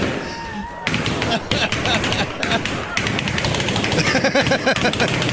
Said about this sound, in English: The Guinness World Record for popping 200 balloons with a nail. Ready, set, go! Sounds like a machine gun.